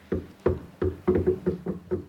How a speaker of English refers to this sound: Come in if you stop knocking.